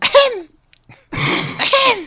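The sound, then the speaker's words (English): A person does a theatrical, voiced imitation of a famous singer coughing: two loud bursts with sliding vocal tones, separated by a short pause. “Yeah, I can also do other famous actors coughing if you want.”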